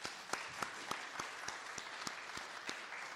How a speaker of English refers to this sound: How many years were y'all married? I think that's worthy of an applause.